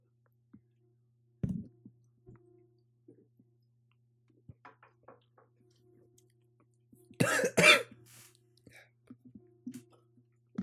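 A single sharp cough from a person whose drink went down the wrong pipe, then after a quiet pause a loud, harsh burst of two or three quick coughs, with small throat-clearing sounds and clicks over a steady low hum.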